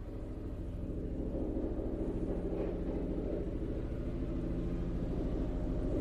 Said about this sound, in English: if you can hear it, there's a helicopter. I'm so sorry. What the fuck?